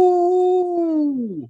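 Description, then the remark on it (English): A person lets out a single loud howl, imitating a wolf or dog: a steady sustained tone for over a second that bends downward and fades at the end, with no other sounds. “Today, we're going to talk about being on the road again, howling. Ow!”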